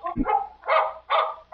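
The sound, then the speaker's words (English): A dog named Bosco barks several times in quick succession, sharp mid-pitched woofs with short gaps between them, loud and clear with no one talking over them. “What is it, Bosco? What's the matter, boy? What are you trying to tell me?”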